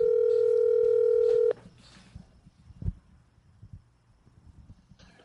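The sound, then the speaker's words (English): A loud, steady telephone ringing tone, heard while placing a call to a contact at Levity near midnight, sounds once for about a second and a half, then cuts off abruptly, leaving faint line noise and a single sharp click. “Thank you for calling him.”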